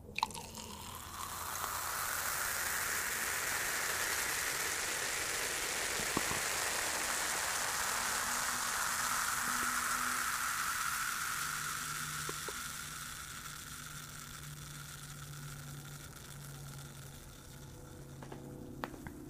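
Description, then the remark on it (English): Prosecco pours and fizzes in a glass, a dense, steady crackling hiss of tiny popping bubbles that slowly thins out over about twenty seconds, with no voices. “So if you want to get a nice audio recording of the sound of Prosecco in a glass.”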